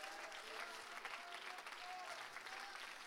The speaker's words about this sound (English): If you believe that you're leaving here with purpose, would you clap your hands and praise God? Hallelujah.